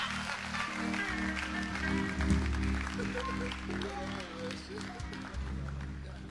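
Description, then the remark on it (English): An audience claps steadily and continuously for several seconds to welcome a pastor to bring the word of God, a dense wash of hand claps over sustained low musical tones, with some indistinct voices mixed in. “Let's clap, let's clap, let's clap, let's clap, let's clap, let's clap.”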